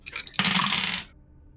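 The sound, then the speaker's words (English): Dice are rolled for a sanity roll, rattling and clattering across a hard tabletop: a few light ticks followed by a dense tumbling roll that lasts about a second before stopping abruptly. No one speaks. “So I will ask you to make a sanity roll.”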